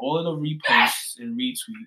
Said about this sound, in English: Bless you. Thank you.